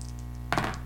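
Two dice clatter across a tabletop in a short, bright rattle of quick clicks that dies away within a fraction of a second, over a steady low background hum.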